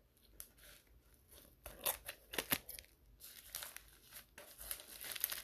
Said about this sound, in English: It is basically like a bubble wrapped envelope. So here we go. I probably use the scissors to open things.